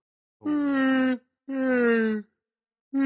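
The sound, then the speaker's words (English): A person lets out a forced, drawn-out, groaning yawn, two long voiced moans with falling pitch and a third just starting as it ends. “because quite often yawns sound like Chewbacca,”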